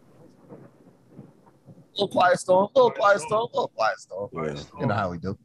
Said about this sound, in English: A little quiet storm.